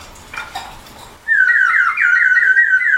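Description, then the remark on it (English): A water-filled whistle from New Zealand bursts into a loud, steady, high warbling trill, bubbling and chirping like a songbird, after a second of quieter rustling and faint sounds. “I'm just blowing in it. I'm not even doing anything. Oh, it's because of the water.”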